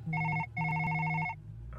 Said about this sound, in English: It's yours. Huh? Your phone is ringing. Right. I know that.